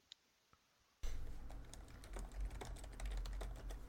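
Rapid clicking of keys on a computer keyboard, heard through an unmuted microphone on a call, starts abruptly after a near-silent second, continuing as a steady patter of keystrokes over a low background hum.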